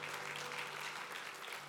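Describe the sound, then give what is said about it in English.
Audience clapping for the story of a woman healed of cancer fills the moment, a dense, steady patter of many hands applauding together at an even level, with no voices standing out. “Some people would clap for that.”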